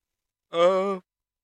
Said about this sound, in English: I yawn.